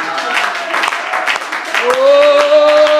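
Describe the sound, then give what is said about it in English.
An audience claps hands together in a steady, loud rhythm in praise to the Lord, and about halfway through a sustained tone or voice rises and holds beneath the clapping. “Oh, let's clap our hands one more time unto the Lord and give Him praise.”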